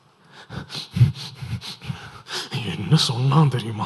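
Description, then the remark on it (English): A person in a meditation practice demonstrates the shallow, quick breathing of someone emotionally pumped up: a run of about four rapid, panting breaths, followed by a voice speaking. “Shallow breath, quick.”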